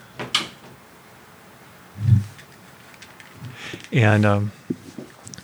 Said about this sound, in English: Closing the door.